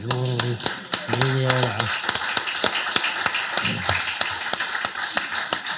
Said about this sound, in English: Everyone here has survived this, right? We should all give each other a round of applause for survivors.